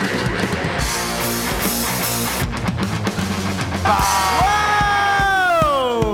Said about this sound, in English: This crowd is rowdy. We're in Wilmington, North Carolina at Wilmington Brewery Company.